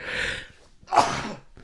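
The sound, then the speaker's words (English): A sharp breathy intake followed by a single loud sneeze burst, then a brief tail of breath and quiet. No talking around it. “Cause I want to make it like, oh no, I'm gonna sneeze.”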